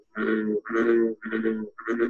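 Two bullfrogs competing with each other trade deep, resonant call notes back and forth, four loud droning croaks in quick succession with brief gaps between them, no other voices present.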